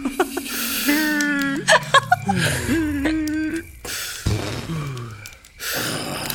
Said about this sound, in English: So first thing, you guys need to breathe 3 times deep, okay?